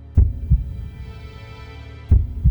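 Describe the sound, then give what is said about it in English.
A steady heartbeat at 75 beats per minute, two low lub-dub double thumps spaced evenly apart, with a soft, faint hum filling the gaps between beats and no voices present. “Her pulse was a cool and steady 75 beats per minute.”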